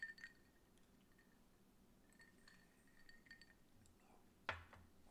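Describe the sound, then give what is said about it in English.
Glasses of a sweet cocktail made with grenadine and Aperol clink together once in a toast, a bright sharp ring near the end, after faint scattered small clinks and quiet liquid sounds. “So clink it up.”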